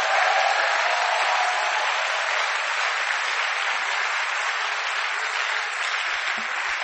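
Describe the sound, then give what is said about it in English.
Sustained applause from a large crowd clapping for God, a dense, steady wash of many hands clapping at once for about seven seconds, holding an even loudness throughout with no voices standing out. “Clap for God.”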